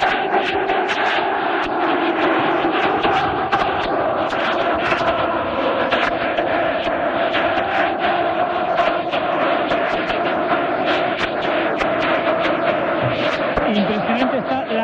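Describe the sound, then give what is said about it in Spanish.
A massive stadium crowd of Atlético de Madrid fans, the stands full of red-and-white scarves, sings the Atlético de Madrid anthem in unison after a goalless quarter-final against City. A loud, unbroken wall of voices carries a sustained melody over the roar for the whole stretch. “Cuajada de bufandas rojiblancas mientras que entonan el himno del Atlético de Madrid.”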